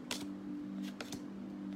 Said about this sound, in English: We shuffle the cards. Queen of Spades comes popping right back up.